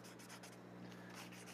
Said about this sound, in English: Let me grab my highlighters here. Highlight the scripture here.